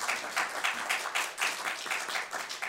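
A steady patter of clapping from a small group, dense and continuous for a few seconds at moderate volume, with no voices over it.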